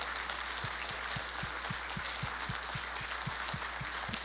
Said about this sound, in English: If you are a mom, would you just simply stand up and wave at us? Would you just stand up right where you are, wave at us? Dads, parents, kids, let's just give them a round of applause right now.